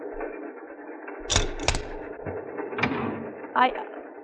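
A train compartment door on the Orient Express is handled and slid part way open with a few sharp mechanical clunks and rattles, over a steady low rumble with faint murmuring in the background.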